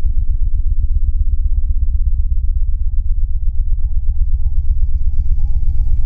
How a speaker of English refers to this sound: It was when Buddha shouted, Echo! That I started to hear the hum.